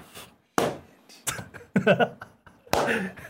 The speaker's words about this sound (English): But, so you got the slow clap going on here.